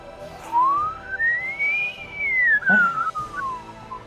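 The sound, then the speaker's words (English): A person whistles one long, clear note that glides smoothly upward and then slides back down, like a friendly hello whistle. It is steady, with no talking. “and just do a little like, hello, like, you know, that whistle that I can't do.”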